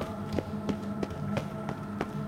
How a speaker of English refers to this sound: As you can hear by the footsteps.